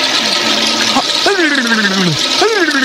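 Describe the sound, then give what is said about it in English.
A toilet flushes with a steady rushing of water for the whole stretch, while a voice makes a few drawn-out, gliding vocal sounds over the noise. “Hopefully the water spinning around your head will splash into your face and you will awaken from your delusions.”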